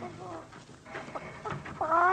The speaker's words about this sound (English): Listen. That's a chicken. She's a fat one. She's doing practically all the things a chicken can do. And besides all this cleverness, she's about to perform her primary function. She's going to be a dinner.